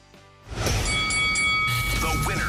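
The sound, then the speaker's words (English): A bell rung to mark the winner of a number-guessing contest rings out with a bright, sustained tone that hangs for a couple of seconds, set against a busy wash of noise and voices. “ring the bell.”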